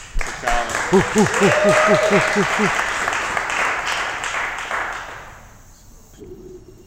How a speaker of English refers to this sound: You're good. Maybe a little applause.